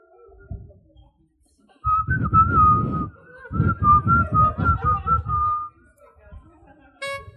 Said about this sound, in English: Give me the whistle, the flutes.